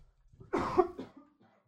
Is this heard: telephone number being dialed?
no